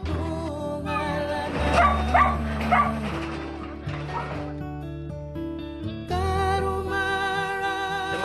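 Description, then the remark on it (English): A dog poisoned with 1080 howls and whimpers in distress, with long wavering cries that rise and fall almost continuously, easing briefly before swelling louder again near the end. “They get dying fits and starts and froth in the mouth and howl and carry on.”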